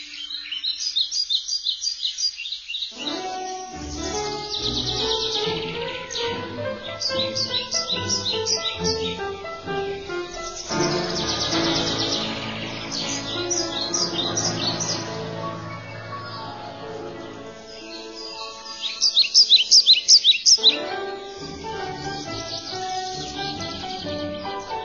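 A chestnut-bellied seed finch (curió) sings a rich, continuous stream of warbling, violin-like whistles and rapid chirps, loud, with brief pauses and a brighter trilled burst near the end.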